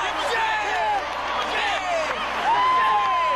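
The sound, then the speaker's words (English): A crowd of more than 70,000 fans in a dome stadium screams and cheers in a dense, continuous roar, with individual yells and whoops rising and falling above it, loud throughout and swelling further near the end. “Imagine Seth Green loose on the floor of the dome in front of more than 70,000 screaming, yelling, chinging fans.”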